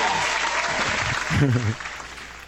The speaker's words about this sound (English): Oh, shortest applause ever. Shortest applause ever.